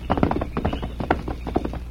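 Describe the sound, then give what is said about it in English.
A white horse's hooves clip-clop in a quick, steady rhythm as it rides away at night, each hollow knock distinct, with no voices over them. “Two Gun watched until the masked man and the white horse were lost in the night. Then he, too, got underway.”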